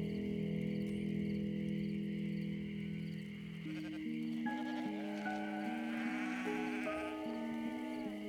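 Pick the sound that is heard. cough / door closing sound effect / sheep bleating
sheep bleating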